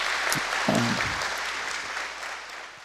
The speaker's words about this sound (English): We've had a lot of awesome students help this morning, all giving up their time and their energy and willing to embarrass themselves in any different thing. If we could give a big round of applause to them, please. Thank you all so much.